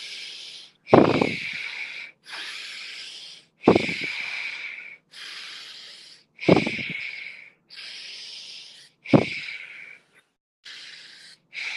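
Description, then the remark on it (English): Forceful breaths drawn in and pushed out through the right nostril only, with the left nostril closed off by the left hand, a sharp hissing rush repeating about every three seconds, fairly loud, with no talking. “Again, your left hand is closing off the left nostril, so we're isolating, just breathing on our right nostril only, in and out.”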